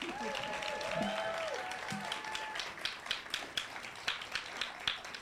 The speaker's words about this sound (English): Thanks, everyone. Okay, clap a little bit more.